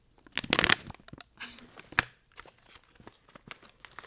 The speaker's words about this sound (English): I'm going to open the bag.